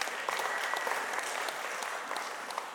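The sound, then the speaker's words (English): A crowd claps steadily in applause for a first annual camping trip that over 40 people attended, a dense wash of many hands at moderate loudness, sustained evenly for a few seconds with no voices over it. “Let's give a round of applause for that.”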